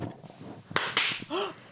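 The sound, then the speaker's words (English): Two loud, sharp hand claps in quick succession, each a bright, crisp smack, demonstrating how a chef claps when stepping out of the kitchen to introduce himself to diners, followed by a short voiced sound from someone. “They're really loud and claps.”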